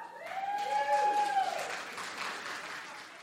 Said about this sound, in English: I'm only playing to the front because it just turns into amorphous darkness back there. How deep does it go? Back row, clap.